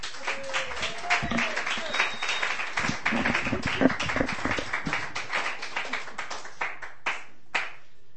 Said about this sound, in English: I've not informed our first poet that she's about to go up, so give her a real round of applause.